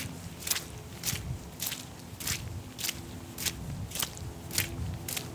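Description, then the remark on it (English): Steady footsteps tramp along a muddy forest trail on a December hike in the Hoyt Arboretum, on a ridge in Washington Park in Portland's Southwest Hills: about nine wet, crunchy steps in an even walking rhythm over a low, constant background rumble, with no one speaking. “Today, it's a muddy December hike in the Hoyt Arboretum.”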